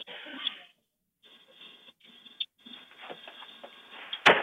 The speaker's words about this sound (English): So a crazy looking guy walks up to a home. The first thing you hear is him kicking in the door and then the homeowner catches him.